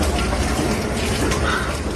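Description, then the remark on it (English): Steady, heavy rain pours down at the Oklahoma City Zoo in a dense, even hiss that fills the whole clip without a break, loud and unchanging, with no voices on top. “And finally today, do gorillas really hate the rain this much?”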